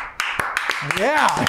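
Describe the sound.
A handful of sharp, separate hand claps in a loose, uneven rhythm at the Glass House Studios in Nashville, Tennessee, as people clap on cue after the host claps, with a voice rising and falling over the later claps.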